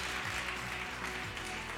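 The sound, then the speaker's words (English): A crowd claps steadily, a dense, even wash of many hands applauding at a consistent loudness with no speech over it, applauding the second- and third-place winners of a contest in a church on a Sunday morning. “Give them a clap, everyone.”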